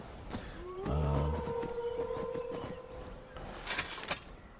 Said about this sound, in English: There's a couple of wolves down here